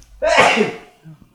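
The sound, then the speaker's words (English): A single loud sneeze bursts out sharply and fades within about half a second, followed by a faint murmur afterward. “Still heard you sneeze even though you turned your mic off, boy.”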